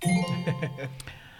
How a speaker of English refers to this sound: Yeah, ring the bell. Okay.